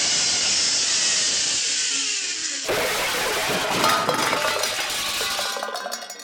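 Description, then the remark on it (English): A steady rushing whir gives way to a loud burst of metallic clattering as tin can bowling pins on a zipline bowling alley are knocked down, rattling and clinking for several seconds before fading. “I've got some pins to knock down.”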